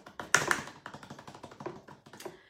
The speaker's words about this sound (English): And the winners are... I should have done a drum roll on my keyboard.